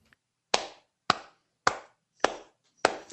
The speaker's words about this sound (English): Slow clap.